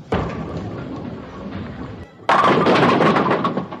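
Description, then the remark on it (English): A bowling ball rumbles steadily down the lane for about two seconds, then crashes into the pins with a loud, clattering burst that rattles on to the end, knocking over 6 pins and leaving 4 standing. “Mark knocked over 6 pins, leaving 4 pins standing.”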